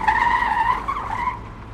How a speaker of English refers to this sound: A car careens out of a side street a few blocks ahead, fishtails around the corner, and speeds past you. Then it screeches to a stop and backs up.